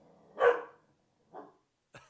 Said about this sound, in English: Oh, there is. I lied. There's a dog.